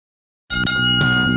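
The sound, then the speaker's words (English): Two bright bell chimes ring out after a short silence, the second struck about half a second after the first, their clear tones overlapping and sustaining loudly with no voices, marking a show's return from a break. “Two bells, and we are back.”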